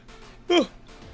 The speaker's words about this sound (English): Sorry, I just yawned. Yeah, that was awkward.